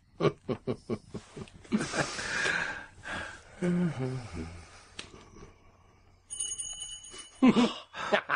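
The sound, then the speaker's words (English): A bright, ringing doorbell chime sounds briefly and clearly after a stretch of people talking, its tone hanging for about a second before voices return. It is the dramatic doorbell ring in a Sherlock Holmes drama. “Waiting for the dramatic ring at the doorbell.”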